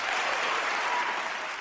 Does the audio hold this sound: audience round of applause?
yes